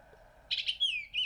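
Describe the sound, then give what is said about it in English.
A bird calls with a quick run of bright, high chirps and a sliding whistled note, clear over a faint low background hum, after a short quiet start. “Google would have asked if I wanted to translate this bird call”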